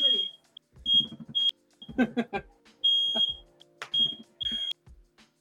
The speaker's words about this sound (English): Whose fire alarm is going off? Don't mind us. My apartment's burning down. It's okay. I had to make sure it wasn't mine.